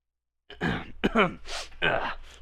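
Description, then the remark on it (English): Someone clears their throat after a brief silence, a series of rough, voiced grunts broken by a breathy rasp, loud and alone without any talking. “Let me clear my throat of sadness.”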